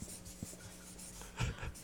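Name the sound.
pen writing on paper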